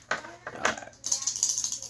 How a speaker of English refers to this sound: when it says you must attempt a roll for each trait, so you're going to roll for each of your traits. So for your knowledge, you'll roll with three dice, and so on and so on.